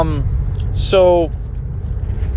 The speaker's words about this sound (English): And I really hope this recording has a decent quality for being in a moving car.